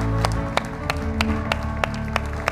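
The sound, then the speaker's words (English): A church audience applauds, celebrating two people getting right with God. The applause comes through as a steady run of sharp, evenly spaced claps, about eight in a row, over a constant low hum with no one speaking. “That's worth a massive big round of applause, isn't it?”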